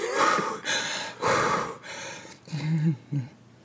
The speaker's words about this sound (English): I can't. I'm choking. Breathing, drinking, different things.